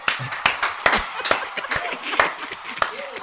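A few people clapping with sharp, irregular hand claps, loud and brisk for a few seconds, applauding a question, with a faint bit of chatter or laughter mixed in.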